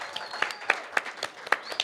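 An audience applauds in a steady wash of clapping, with a few sharper individual claps standing out in an irregular rhythm over about two seconds, moderately loud and without talk.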